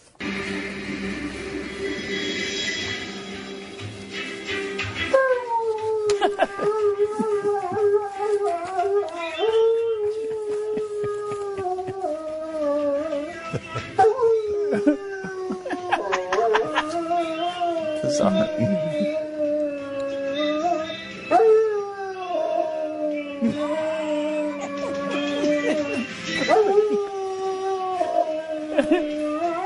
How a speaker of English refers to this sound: And the dog was taped singing the Glenn Beck radio jingle.